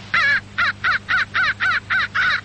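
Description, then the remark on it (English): A rapid series of eight harsh, loud crow caws played back through Johnny Stewart's transistorized Electrocall Crow and Varmint Caller, with a slightly buzzy, amplified tone and a faint hum underneath. “When you project these sounds on the Electrocall, you get results. Foxes, bobcats, and especially crows come as fast as they can run or fly.”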